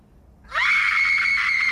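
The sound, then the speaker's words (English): A single piercing, blood-curdling scream by Cheryl Lee erupts after a brief quiet moment, rising quickly to a loud, sustained high-pitched wail that holds steady to the end. “Nobody does a blood curdling scream like Cheryl Lee.”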